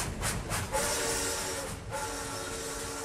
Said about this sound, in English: The monkey got on a very fast train.